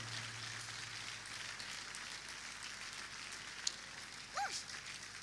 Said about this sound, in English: stand up and put your hands together for Jesus. I didn't say clap for me. I said clap your hands for Jesus, my friend.